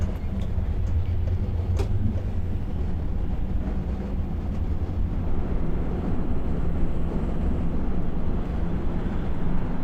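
Steady low rumble of a bus driving, heard from inside the cabin, with constant engine drone and road noise filling the whole stretch at an even, fairly loud level and no voices.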